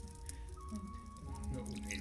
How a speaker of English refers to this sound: Miyamoto pouring him a cup of tea.